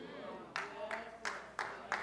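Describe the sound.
One person gives a slow golf clap: five sharp, evenly spaced claps about a third of a second apart, with a faint murmur of voices underneath.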